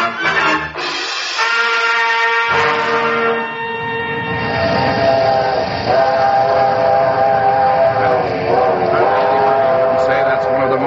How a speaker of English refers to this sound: The working song of a big steam locomotive.